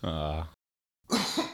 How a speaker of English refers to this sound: Oh, you all right? Yeah, no, I was coughing on that horrible enactment you just did of Batman v Superman.